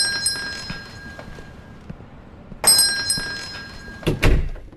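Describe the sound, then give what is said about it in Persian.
Small metal tube chimes hanging above a shop door ring with thin, sustained tones that shimmer and fade, announcing a customer entering, struck again midway, followed by a heavy door thump near the end. No one speaks. “بالای در اسکلتی کوچک که از لوله‌های فلزی ساخته شده آویزان بود که ورود مشتریان را با صدای حزن‌آلود اعلام می‌کرد. زنگوله جیرینگ جیرینگ صدا کرد.”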